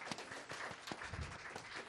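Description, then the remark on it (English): A crowd at a show in Seattle applauds steadily, dense overlapping claps forming a continuous roar of hand-clapping, with a few sharper individual claps standing out. “Can I give a round of applause for y'all?”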